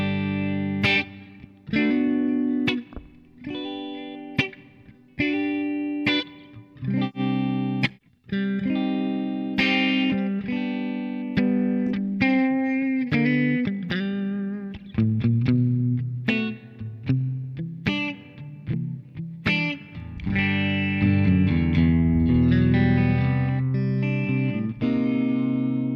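An amplified electric guitar plays a continuous run of chords and notes, drenched in reverb so each strum rings out and blurs into the next, with no voices present.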